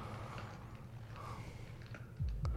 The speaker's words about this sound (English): Some footsteps or something. Ambience, set in the mood, atmospheric.